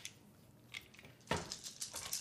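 A handful of dice, including an eight-sided die, clatter and rattle together across a hard surface, a dense burst of small clicks that starts softly and grows busier, fairly quiet, with no voices.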